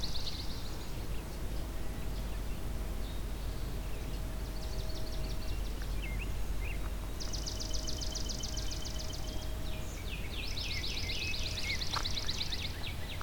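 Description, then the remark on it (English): Swamp sparrows sing repeated musical trills in a wetland at Fletcher Creek Ecological Preserve, several songs following one another, over a steady low outdoor rumble with no talking. “So you're hearing lots of swamp sparrows.”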